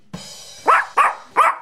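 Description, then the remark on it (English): A dog barks three times in quick succession, short sharp mid-pitched yaps with a brief pause before the last, loud and clear with no talking over them. “What do trees have that dogs do? Bark.”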